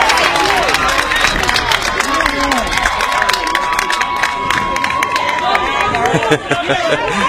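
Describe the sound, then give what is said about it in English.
At a softball game, the Lady Hornets team and the crowd clap and cheer as Parkinson has to come back out on the field, a dense patter of many hands blending with scattered shouts and excited voices, holding loud and steady from start to finish. “And the Lady Hornets will applaud as Parkinson is going to have to come back out on the field.”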